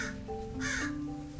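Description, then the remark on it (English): A raven croaks out a harsh, raspy caw, heard once clearly against a steady low background hum, fairly loud with no one speaking. “And the raven is agreeing.”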